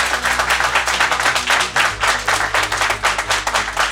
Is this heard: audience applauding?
yes